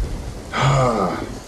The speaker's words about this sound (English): As you come in, there's a bolt of lightning and the wind picks up and you have to use more juice to control the ship.